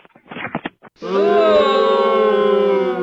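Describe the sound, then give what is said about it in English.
After a brief snippet of voices, a loud sustained booing sound effect swells in, a crowd of low, droning jeers that holds steady for about two seconds. “I hope you're booing the closure of Oceano Dunes and not his Mach 1.”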